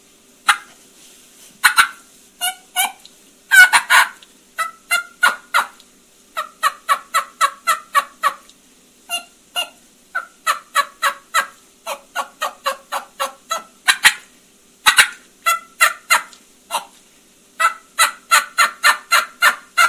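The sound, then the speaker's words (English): A turkey call imitates an excited hen, rapid yelps and clucks bursting in quick runs, loud, with the rhythm speeding up and tightening toward the end. “And as she gets excited, you'll hear me kind of drop her voice drops like a real hen, or I'll try to do like a real hen.”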